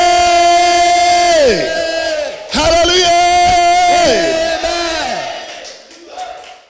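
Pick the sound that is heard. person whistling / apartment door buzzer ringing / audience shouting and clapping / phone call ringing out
audience shouting and clapping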